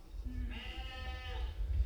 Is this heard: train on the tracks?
no